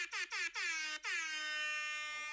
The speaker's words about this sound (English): Oh, we only did one round of air horns. Let's do one more today.